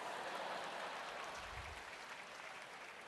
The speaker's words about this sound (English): And you clapping means you have a sick sense of humor.